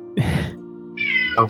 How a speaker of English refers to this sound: Oh, the cat followed us. Gray Malk is just like, feed me!